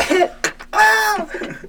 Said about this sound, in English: Can you imagine? I'm going to cough and just snap my back in half.